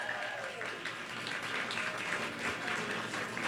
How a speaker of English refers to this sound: Keep clapping, everyone. It'll help the folks on the radio.